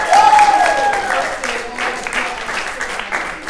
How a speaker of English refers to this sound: I think we should give a big hand clap to Jesus, all of us.